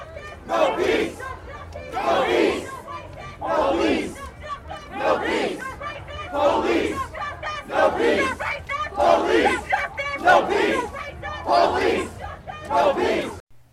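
A large protest crowd at Black Lives Matter Plaza chants "Black Lives Matter" in unison, shouting the short rhythmic phrase again and again in loud, steady bursts with brief pauses between repetitions.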